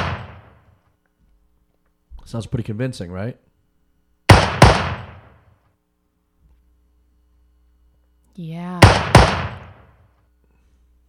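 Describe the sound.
A few loud, sharp cracks of foley gunshot sound effects, each snapping and decaying quickly, with a pair close together and another landing as someone talks; short bits of conversation between them.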